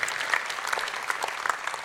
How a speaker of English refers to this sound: And I have to tell you, my notebook is full of examples. So well done to you. Give yourself some applause.